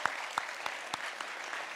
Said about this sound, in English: Can we just give him a hand? We thank you so much.